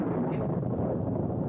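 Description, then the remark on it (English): A deep, continuous rumble of thunder rolls steadily through an electrical storm, heavy and broad with no sharp breaks, and no voices over it. “The way things get dark so fast and all that crashing around out there makes you think of that verse from Joel where it says, "The earth shall quake before them,”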